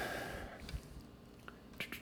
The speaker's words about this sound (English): All right, kids, I'm yawning.